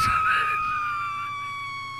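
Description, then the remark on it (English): A microwave bomb goes off in the middle of suburbia with an abrupt burst, then a shrill, steady scream-like wail holds for about two seconds, slowly fading with no one talking. “as evidenced by that scream, it was actually a microwave bomb that was going off in the middle of suburbia.”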